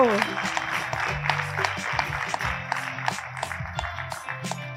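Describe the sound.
Steady audience applause, a dense crackle of many hands clapping at moderate loudness, with faint murmuring voices and low tonal sounds beneath it throughout.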